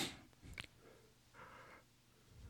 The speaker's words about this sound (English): I take a sniffle and all of a sudden I'm yawning.